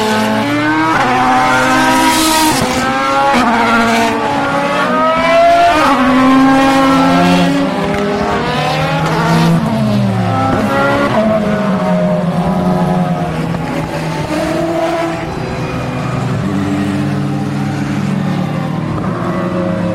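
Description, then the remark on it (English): Several racing car engines roar loudly and continuously as the cars, including the number one Audi, the number nine Peugeot and numbers eight, three and seven, pass one after another, their pitch rising and falling, with a faint screech of tires, no voices. “The number one Audi, the number nine Peugeot. The number eight, number three, seven.”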